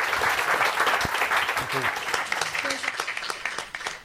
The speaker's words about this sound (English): But before you do that, please give our guests a huge round of applause. Thank you so much.